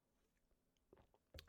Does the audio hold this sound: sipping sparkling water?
yes